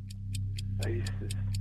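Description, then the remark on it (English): A quiz countdown clock, with 49 seconds on it, ticks rapidly and evenly, about four crisp ticks per second, over a steady low electrical hum, with a brief murmur of voice partway through. “49 seconds on the clock.”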